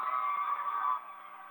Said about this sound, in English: Now they're working it left to right down the field on your Blue Devils. And Blue Devils come over. And we are going to have a whistle here on your OFA Blue Devils.